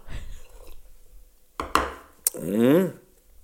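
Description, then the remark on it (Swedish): A quiet sip of water: a few soft clicks and a gulp, then a brief voiced, rising sigh of relief after swallowing. “Och då ska jag bara här ta mig en klunk vatten för att kunna framföra den där.”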